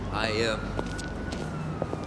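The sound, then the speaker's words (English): A short burst of a wailing ambulance siren, from an ambulance carrying two people to a hospital, rises and falls loudly at the start, then cuts off, leaving a steady faint tone over muffled background noise. “The two ride in an ambulance to a hospital together, only to realize it is not a hospital.”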